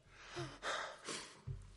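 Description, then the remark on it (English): A sharp, sudden intake of breath as Ruth gasps, catching mid-inhale, followed by shorter breathy exhales. No talking, just the quick startled breathing. “Ruth's heart stops right in her chest and she gasps for breath.”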